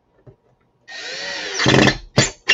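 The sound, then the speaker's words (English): A power drill drives a screw into a pre-drilled hole in wood until it sits flush: a steady motor whine that grows louder and grittier as the screw bites, then two short, sharp bursts of the drill at the end. “So now that we pre-drilled it, you put in your screw, and if you see, it's sitting flush, so it's not protruding past your wood.”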